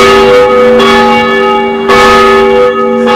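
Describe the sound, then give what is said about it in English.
Church bells ring loudly, with three slow strikes whose rich, humming overtones linger and overlap between blows. No voices are heard. “Whether the bells ring or not.”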